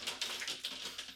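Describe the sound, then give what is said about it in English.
Heavy hail with big hailstones falls in a dense, continuous rattle of sharp, high-pitched ticks and taps, fairly soft overall with slight surges in intensity and no voices. “just as a note, if you can hear it, it's hailing rather significantly hard at the moment, so if listeners can hear that.”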